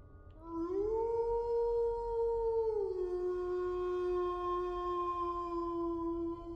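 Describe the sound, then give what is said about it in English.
A mountain lion lets out one long, loud, drawn-out call, rising at the start and dropping to a lower sustained tone that holds for several seconds, heard alone. “I searched for the sound on YouTube. I was suspicious that it was a mountain lion.”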